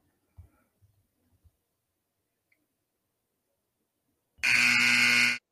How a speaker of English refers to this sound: A little late on the buzzer